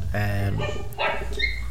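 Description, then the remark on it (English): A dog barks and yelps a couple of times outside a house, somewhat muffled, over a steady low background hum. “Someone strangled dogs outside my house.”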